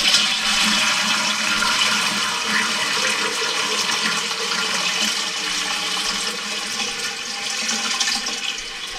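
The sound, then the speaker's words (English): A toilet flushes loudly, a steady rushing hiss of water that holds strong for several seconds with no voices over it. “Flush the toilet again.”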